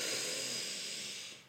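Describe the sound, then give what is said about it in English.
A long, deep diaphragmatic breath drawn in through the mouth during a laughter yoga breathing exercise, a steady airy rush that tapers off at the end, with no talking. “So let's do some diaphragmatic some laughter yoga breathing.”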